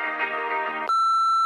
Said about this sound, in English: But if you leave a message after the beep, I'll get back to you as soon as I can.